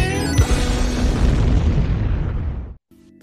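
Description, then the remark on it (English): A loud explosion in played video footage erupts into a sustained roaring boom with rumbling debris, holding steady for nearly three seconds before cutting off abruptly to near silence. “You guys don't look at explosions, they blow things up and then walk away.”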